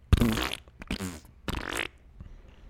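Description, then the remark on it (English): A person blows a few wet, sputtering raspberry noises with their mouth, imitating a fart in short loud bursts with brief pauses between. “It's just a fart noise. I don't really know how to spell it. I guess P-F-F-F-F-T.”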